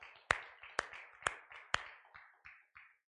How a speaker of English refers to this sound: Praise the Lord. God is good all the time. Let's give Him one more hand clap of praise tonight.